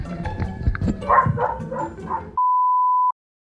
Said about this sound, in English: Do you guys hear my dog barking? I'm sorry. Can you guys hear that at all? She's outside.